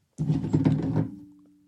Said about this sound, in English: I almost knocked over a glass of water all over my Roadcaster.